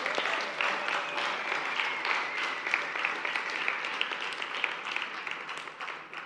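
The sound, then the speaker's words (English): Steady applause from a church audience honouring a couple with an award, many hands clapping in a dense, continuous patter that holds at an even level for several seconds before easing slightly at the end. “Keep clapping, guys.”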